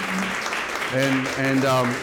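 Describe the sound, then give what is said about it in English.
Steady audience applause at a book launch reading fills the whole stretch, a dense crackle of many hands clapping at once, with a voice speaking over it partway through. “It was launched from, thank you, clap for this.”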